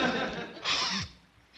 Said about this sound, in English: stop breathing on the car. You're taking the paint off.